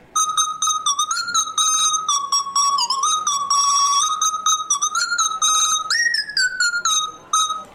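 A mobile phone ringtone plays a continuous, high-pitched, whistle-like melody with gliding notes for several seconds, fairly loud and steady, with no talking.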